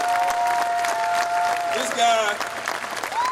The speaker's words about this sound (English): Let's give a round of applause to my dad over there.